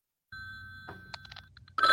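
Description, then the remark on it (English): An electronic telephone ring sound effect plays as a steady high tone over a low hum, broken by a few short chirps before a louder burst of ringing cuts in at the end. “I'm unplugging the phone line as we speak. Actually, I'll just let it off the hook.”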